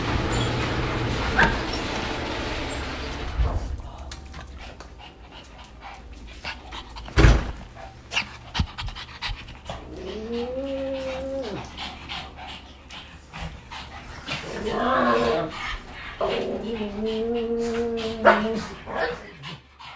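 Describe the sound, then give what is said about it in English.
Several pet dogs, excited that their owner has come home at the end of a long day, whine in rising, wavering bursts alongside quick, breathy panting and a few sharp yips, eager, with clattering movement in between. “So at the end of a long day, it's some of my favorite sounds to hear my dogs being excited that I'm home.”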